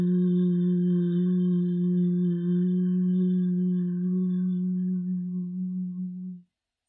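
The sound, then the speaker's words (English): A single sustained closed-mouth hum, chanted on the exhale during a breathing exercise, holds one steady low pitch for about six seconds, fairly loud, with no talking, then fades out abruptly. “So keeping your lips closed as you reach the end of the hum sound.”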